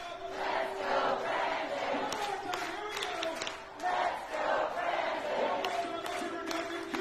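A large crowd in a video being played roars and cheers continuously, cheered on from the stage, a dense wall of shouting voices with a few sustained pitched yells standing out, loud and steady for several seconds with a brief dip midway.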